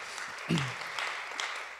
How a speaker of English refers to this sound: Absolutely, clap for that. Absolutely.